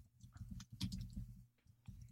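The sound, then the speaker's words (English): Quiet, irregular clicking of someone typing on a computer keyboard, a handful of soft keystrokes over a low background hum, with no one speaking. “Typing in Kentucky Debbie,”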